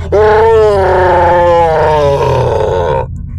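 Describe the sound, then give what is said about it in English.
A furious, monstrous roar from an angry chieftain blasts out loud, one sustained bellow of about three seconds that holds its raspy pitch before cutting off abruptly, with no other sounds around it. “The chieftain, nearly white hot with anger, roared a terrifying roar.”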